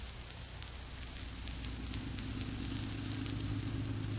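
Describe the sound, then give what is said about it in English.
A car engine hums steadily at a low pitch while driving, with a constant rumble and faint crackly road noise, growing slightly louder and staying continuous throughout with no voices. “Let's say we pile in the car and ride around in that vicinity.”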